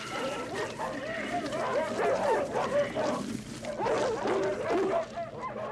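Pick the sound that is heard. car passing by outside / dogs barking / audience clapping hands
dogs barking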